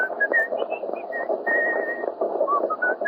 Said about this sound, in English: What's that tune you're whistling?